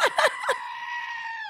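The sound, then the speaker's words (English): Goats bleat three quick times in a row, then one lets out a long, drawn-out, scream-like cry that holds steady to the end. Fairly loud, with no talking. “Okay, the goats were pretty great. I did love the goats.”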